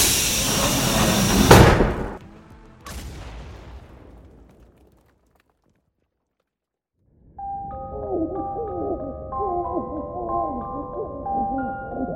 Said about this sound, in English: That did it. Door's open.